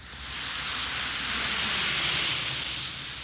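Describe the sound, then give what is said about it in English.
A steady, dense hiss of fizzing bubbles from an Alka-Seltzer tablet dissolving in water, bright and even throughout, with no voices. “Listen to it fizz.”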